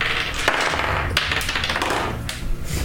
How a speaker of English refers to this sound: Well, roll your die.